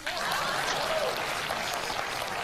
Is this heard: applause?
yes